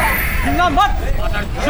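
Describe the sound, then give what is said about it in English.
A loud, agitated riot crowd shouting all at once, with several raised voices rising over a dense, continuous roar of yelling that never lets up. “I landed in the middle of a riot.”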